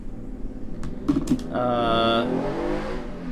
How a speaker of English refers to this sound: Loud ass fucking motorcycle outside.